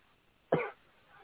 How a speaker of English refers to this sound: excuse me. I'm still coughing just a tiny, tiny bit from my flu, but that's okay.